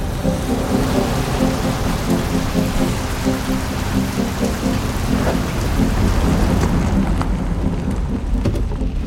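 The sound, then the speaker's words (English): Steady, heavy rain pours continuously with a dense hiss and low rumble, a downpour on a car that is being driven, loud throughout with no voices. “Dude, I'm driving in the rain, okay?”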